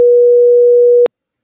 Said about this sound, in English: Yeah, well, no, just bleep him. Go, where are we going after this? And then go, beep.